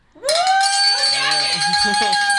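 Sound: hand bells ringing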